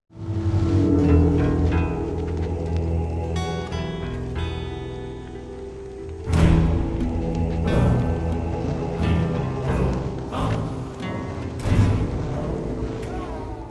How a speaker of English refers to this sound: There's one I really liked during the Viking scene, tribal chanting with the wall underneath. I'm going to play a little bit of that.